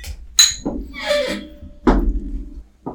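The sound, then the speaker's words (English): Glasses clink together in a toast with a bright, ringing tap, followed by several duller knocks and thumps of glassware being handled and set down. “All right, cheers. Cheers. Tink.”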